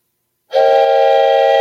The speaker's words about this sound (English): Wisdom whistle.